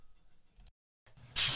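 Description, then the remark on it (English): A sudden, loud hiss of aerosol bug spray bursts in and keeps going to the end, after faint handling noises and a short silent pause. “And I'm not saying that you do, but if you get roaches, do you spray your pots and pans down with Raid?”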